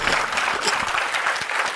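An audience claps steadily and loudly, a dense wash of many hands with no pause in the applause for its full length.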